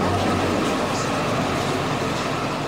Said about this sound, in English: We're on a street called Mina that's like the central artery for most bus routes traveling east and west across the city.